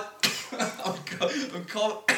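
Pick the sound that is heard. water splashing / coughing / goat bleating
coughing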